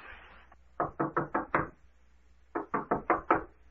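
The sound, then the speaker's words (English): Two quick bursts of five sharp knocks on a wooden door by a bellboy delivering a telegram, evenly spaced and fairly loud, with a short pause between the groups and no voices. “Doc, open the door a crack.”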